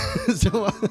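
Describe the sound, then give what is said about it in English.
A person coughs and clears their throat several times in quick succession, fairly loud, with rough, voiced, throaty bursts. “Can't talk, busy coughing.”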